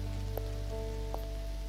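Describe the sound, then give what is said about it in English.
Steady rain patters on city street pavement at night under a low constant hum, with a couple of brief splashy drips standing out; no one speaks. “I like walking alone at night, especially in the rain.”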